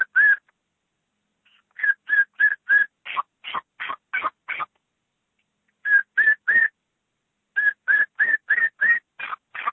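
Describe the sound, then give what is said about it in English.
A turkey kee-kee run made on a hunting call, imitating a lost hen and thrown at a hen that answers: three quick bursts of high, whistled peeps rising into raspy yelps, fairly loud, with short pauses between bursts and no talking. “Basically what I usually do to try to get that hen, I try to get the gobbler excited, but then when I hear that hen, I'll go back and maybe even throw a little kiki run at her, like, I'm lost, you know, I'm the only one here, and I want you to come”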